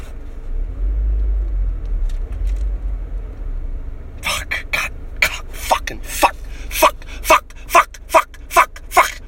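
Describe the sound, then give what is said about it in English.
A deep, steady car engine rumble from passing road traffic fills the first few seconds, then fades under a rapid series of sharp, rhythmic bursts. “Traffic.”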